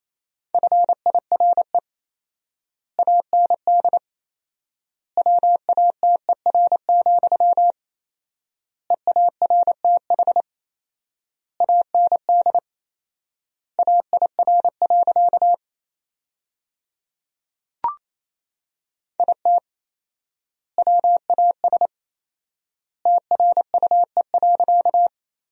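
Morse code at 28 words per minute with four-times word spacing, sending sentences built from the top 400 words, as a single steady mid-pitched beep, rapid dots and dashes grouped into words with long pauses between them, plus one sharp click partway through; no voices.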